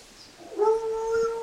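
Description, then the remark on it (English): A female cat named Jolie lets out a single long, drawn-out howl that rises briefly then holds a steady, strained tone for about a second, loud and with no one talking over it. “Oh, there's the sound I wanted you to hear. She howls.”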